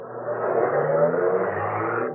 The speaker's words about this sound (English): The man got in, drove off.